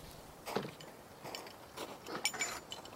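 Crampons squeak and crunch into cold, frozen snow during slow walking up the West Buttress headwall above 14 Camp: four or five uneven steps with faint, thin metallic squeals over a soft background hiss. No one speaks.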